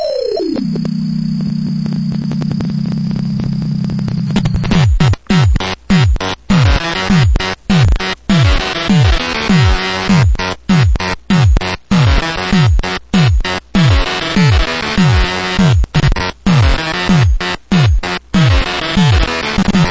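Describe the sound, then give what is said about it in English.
Electronic sound effects from the Gottlieb pinball machine Reactor: a falling tone settles into a steady low buzz with a high whine, then a loud, fast run of repeating beeping bursts and downward pitch sweeps. “And a very underrated game by a company called Gottlieb, Reactor. Check out the great sounds on this one.”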